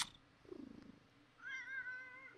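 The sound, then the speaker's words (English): A cat meows, first a short, low, falling call and then a longer, higher, drawn-out meow. No one speaks. “We're on the right side of cats.”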